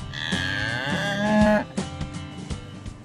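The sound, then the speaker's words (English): A cow lets out one long, loud moo with a rising pitch, lasting about a second and a half, followed by quieter rustling and thumps. “Do you have cows in need of castration?”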